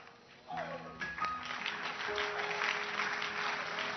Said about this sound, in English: Oh, I'm happy with your hand clap. Clap your hands here.